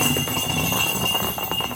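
A goalball thrown as a smooth rolling ball, its internal bells giving off a steady, continuous jingling rattle with bright high ringing tones over a low rumble, holding at an even, moderate level throughout.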